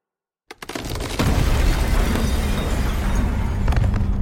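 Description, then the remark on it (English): A door is smashed off its hinges with a man flung through it, a sudden heavy crash after silence, followed by a loud, sustained roar of splintering, rumbling noise with a few sharp knocks near the end. “It came crashing off the hinges.”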